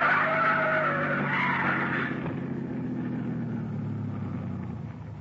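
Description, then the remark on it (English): A car's tires squeal loudly in a long skid over a heavy, rumbling engine as it squeezes between a trailer in front and an oncoming truck, the screech fading after a couple of seconds while the low motor roar carries on. “The trailer in front of him. And the oncoming truck. Van Hook's trying to squeeze through. Pull up”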